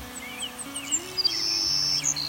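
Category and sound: bird, savannah sparrow song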